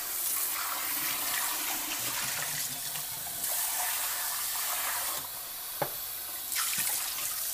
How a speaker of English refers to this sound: My husband keeps making really sticky, gross stuff in our pots and pans, and they're just not coming clean anymore. I'm going to try to use a little spray nozzle for this.